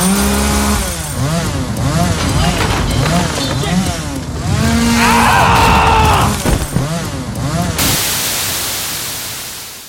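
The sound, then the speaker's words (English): A chainsaw revs loudly, its engine whining up and down in repeated bursts amid shouting voices, then the sound cuts abruptly to a steady static hiss. “Texas Chainsaw Massacre? Really? I heard it was true. Maybe he found the actual place.”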